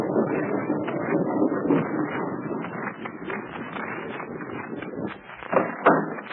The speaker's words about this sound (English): After a moment, the rock swings away slowly, and a narrow lane is disclosed. The tank rumbles through, followed by the car.